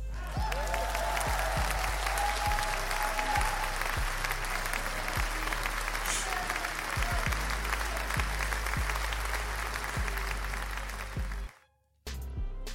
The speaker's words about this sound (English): Let's give another round of applause to the president of Mexico.